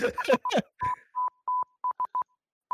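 A steady, high-pitched beep taps out a Morse code SOS pattern of short and long tones, clear and close, following a few brief rough, noisy bursts at the start.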